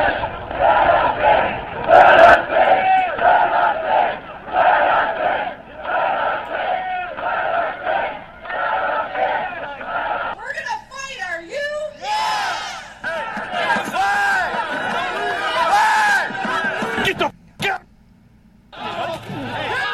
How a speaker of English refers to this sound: And so now the crowd is chanting, "Let us in! Let us in!